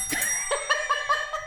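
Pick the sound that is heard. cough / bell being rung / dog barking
bell being rung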